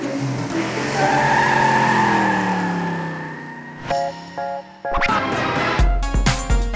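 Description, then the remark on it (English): NASCAR race car tires skid and squeal through tight turns on a track in one long, loud, wavering screech lasting several seconds, followed by a burst of sharp clattering knocks and rumbling engine noise. “train to safely drive around a track, making tight turns and avoiding the other cars for a long time.”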